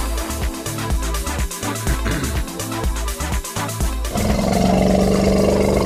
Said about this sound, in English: Yeah, at the beginning it sounds like a lion with that growl. Elephant, it was an elephant.